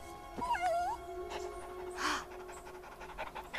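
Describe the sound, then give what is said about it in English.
A dog whimpers with a thin, wavering whine, then lets out a short sharp yip, with breathy panting in between; fairly clear, no talking. “A dog wants me to go to St.”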